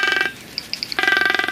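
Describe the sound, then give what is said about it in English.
Loud magnificent frigatebird calls recorded in the Galapagos Islands: a fast, buzzy rattling trill that breaks for a moment, leaving four short, high, evenly spaced notes, before the rattle resumes. “A quick recap of what you just heard was the Magnificent Frigate Birds.”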